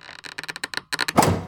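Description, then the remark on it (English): A bathroom door next to a swimming pool, frozen shut, being forced: a quick run of sharp cracking and creaking bursts, then a louder rough burst as it gives way. No voices. “I've been stuck in the bathroom next to the swimming pool for hours. The door's frozen shut.”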